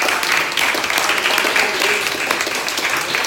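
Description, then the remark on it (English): An audience claps hands in praise of God, a loud, dense burst of applause from many people continuing steadily for several seconds, with scattered voices mixed in. “Give Him a hand clap of praise.”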